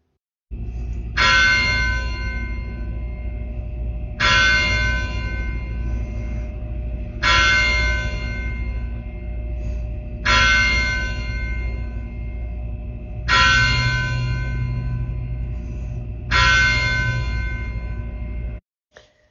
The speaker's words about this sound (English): The service began at 6 o'clock p.m., after the tolling of the church bell.